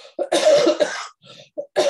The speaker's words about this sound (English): Please forgive this cough. I'm definitely getting better. My voice is weird, but what could I tell you? Sorry.